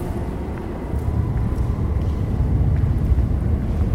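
A deep, steady rumble of an Overground line train, formerly the East London line, passing beneath the feet at the place where Isambard Kingdom Brunel nearly drowned, a continuous low roar that swells slightly after the first second and holds for the rest, with no voices.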